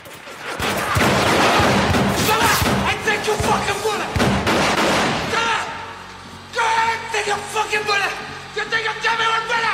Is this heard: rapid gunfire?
yes